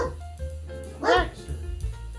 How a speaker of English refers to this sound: Oh, ladies and gentlemen, Baxter's barking. He wants a treat. Baxter needs a fucking treat.